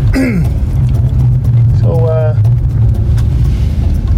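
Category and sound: vehicle, car driving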